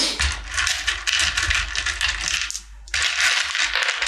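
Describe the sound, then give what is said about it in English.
Initiative dice for a game clatter and rattle on a hard tabletop, a dense run of small clicks and tumbles with a brief lull before another burst of handling. “don't forget to get everybody to give your initiative dice to Remus so you can organize it”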